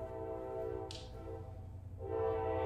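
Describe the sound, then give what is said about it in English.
A train horn blares in one long, steady, multi-toned note, fairly loud, swelling slightly toward the end with a brief hiss partway through. “Train agrees.”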